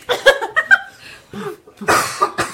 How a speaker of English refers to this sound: That weird half cough. I'm boofing.